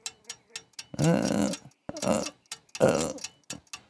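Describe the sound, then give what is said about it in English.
An old mantel clock with a pewter body, in need of oil, ticks with sharp clicks at a regular pace while slowing down, and people talk in short bursts over the ticking. “So you're gonna be a clock fixer upper?”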